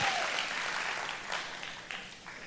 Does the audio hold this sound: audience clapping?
yes